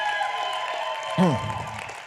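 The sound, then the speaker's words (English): A crowd cheers and applauds a person who has just been baptized, in a steady wash of clapping and voices, with one loud falling whoop rising above the noise midway through. “He just got baptized, but let's just cheer for him one more time.”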